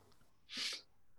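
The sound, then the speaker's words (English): A single short sneeze bursts out over quiet background, a sharp breathy blast lasting about a third of a second before fading back to near silence. “Bless you.”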